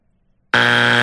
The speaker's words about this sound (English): Oh no! Take that buzzer back. Take that buzzer back.